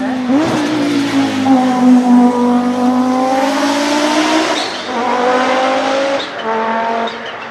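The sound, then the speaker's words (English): A loud turbocharged car engine revs up steadily through several gear shifts, its pitch climbing and dropping at each change, with short tire chirps and turbo blow-off slipping in between the shifts. “I heard something chirping. Yeah, is that tire squeaking in between shifts?”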